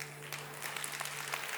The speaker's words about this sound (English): Don't clap.